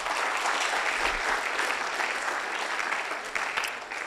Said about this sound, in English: Okay. Clap your hands for yourselves, everybody.